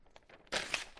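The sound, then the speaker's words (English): Two pieces of paper taped together being ripped apart: a short quiet rustle, then a sudden loud, crackling tear that rasps on for half a second with a brighter peak near the end. No one speaks. “I got two pieces of paper taped together.”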